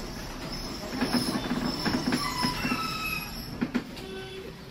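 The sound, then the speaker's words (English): A tram rumbles along its rails, metal wheels squealing and screeching in high-pitched bursts as it slows toward its stop at Chadby, with a steady low mechanical hum underneath and no voices. “The tram stops at Chadby.”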